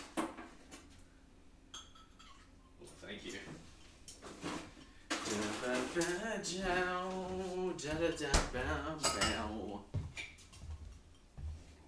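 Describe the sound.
Ice cubes clink against a glass in a few sharp knocks and rattles, with someone talking over part of it.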